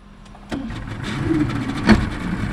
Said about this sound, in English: In a much smaller boat, race announcer … motors out of Newport Harbor. We're going past Goat Island, and on the left is Fort Adams, and in front of us is the Pell Bridge.